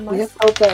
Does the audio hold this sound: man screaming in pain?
no